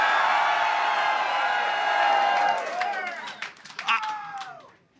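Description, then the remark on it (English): A large rally crowd, called on to scream if they want four more years of Donald Trump, roars with high-pitched screams and cheers, loud and sustained at first, then thinning into scattered shrieks, whoops and bursts of clapping. “If you want 4 more years of Donald Trump, let me hear you scream!”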